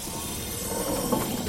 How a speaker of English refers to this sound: Claudius whispered something to one of the robots. The cell doors all opened.